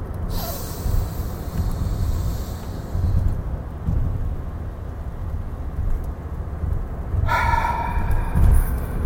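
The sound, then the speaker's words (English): A person doing a deep-breathing exercise, on the first breath of the exercise, takes a quick, sharp intake of breath. A long, quiet hold follows over a low rumble, then a loud, forceful gasping exhale bursts out near the end. “I'm holding it, man. I'm breathing.”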